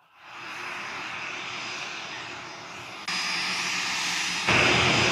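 A jet airplane engine roars steadily with a high whine, then surges louder in two distinct steps as it spools up, loud with no talking.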